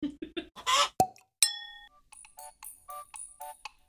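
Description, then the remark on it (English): A chicken squawks in a quick run of short, nasal bursts, fairly loud, following a clattery rustle and a single bright bell-like ding. “The Squawk of the Chicken brings us to a close with today's episode”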